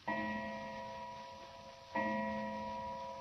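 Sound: clock striking two o'clock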